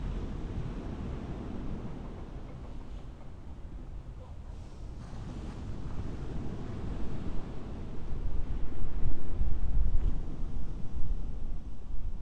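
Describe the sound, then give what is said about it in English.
A continuous low rush of ocean surf and breeze, steady, swelling louder in the last few seconds before easing slightly, with no voices. “And as the awareness tunes to the moment, suddenly in this place I hear waves, I feel breeze, I feel warm sun.”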